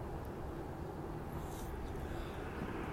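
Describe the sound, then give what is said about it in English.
A steady, continuous low rumble of helicopters hovering over downtown Los Angeles, with no distinct beats, blending into a constant wash of urban background noise. “But this is Los Angeles downtown, and there is definitely a lot of helicopter activity, so we might be seeing something on the news tonight.”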